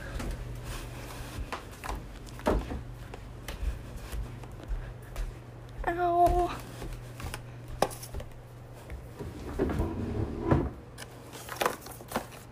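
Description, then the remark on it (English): Cupboard doors open and shut while the cupboard is being organized, with a series of sharp knocks and clicks, one brief creaky squeak midway, over a steady low hum with no talking. “We cleaned the living room and the kitchen, and I organized the cupboard.”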